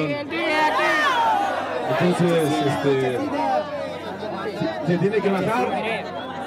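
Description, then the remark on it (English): A large stadium crowd of a caravan protesting as the music is turned off before an assembly, many raised voices shouting and talking over one another in a loud, continuous babble that swells and dips slightly throughout. “When it was time to start the assembly, the music was turned off and half the crowd protested.”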